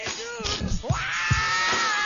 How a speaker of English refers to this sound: I do like his scream, though. I like his scream. He's one of the... It's called belting a song when you're screaming. He's one of the best belters, and yet one of the sweetest, soft voices ever.